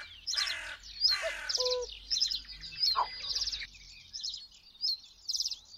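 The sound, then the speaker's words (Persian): Several birds, such as mynas, finches and sparrows, chirp and twitter in quick, repeated bursts in plane trees in Tehran, bright, over a faint low rumble that fades partway through. No one speaks. “میناها، فنجها و گنجیشکها و گهگداری هم توتیای آواره باغهای از دست رفته لای شاخ و برگ چنارا خونه میکنن، و اگه یه روز تهرون ساکت ساکت باشه، لابد بازم میشه صدای این پرنده ها رو شنید.”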